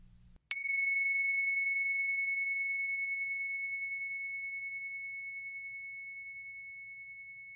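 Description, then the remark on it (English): A single meditation bell is struck once, ringing out with a clear, pure tone that slowly fades over several seconds, heard alone against a faint low hum. “First, let's settle in together with the sound of the bells.”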